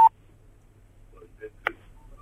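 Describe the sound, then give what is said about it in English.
A few short electronic beeps from mobile phones being used to record, irregularly spaced, the first one sharp and loud and the later ones softer, over a faint low hum with no talking. “That beeping noise is them recording it on their mobile phones.”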